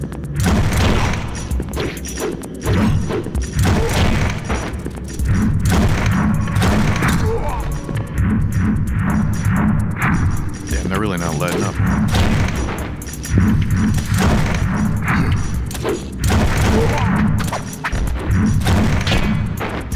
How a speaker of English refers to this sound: Oh. The arm cannon. Get off of me.